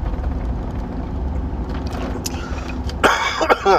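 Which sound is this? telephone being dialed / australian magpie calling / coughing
coughing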